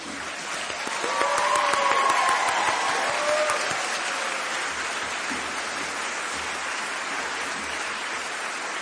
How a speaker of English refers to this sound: I didn't mean for there to be an applause break, but we need more applause breaks in the world.